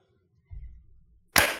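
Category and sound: human body sound, hand clap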